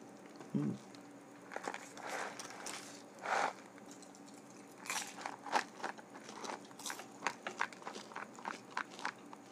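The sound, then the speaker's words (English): Crisp crunching of Cracker Jack caramel popcorn being chewed, a run of irregular crackly bites and munches that come quickly in loose bursts with brief pauses between them. “Cracker Jack, don't talk back. Crackety Yak. Crackety Jack, don't crunch back.”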